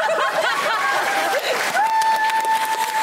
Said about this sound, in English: Hey, clap if you had a good time.